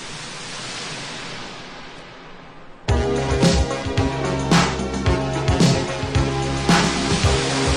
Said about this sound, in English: You hear that crashing wave sound?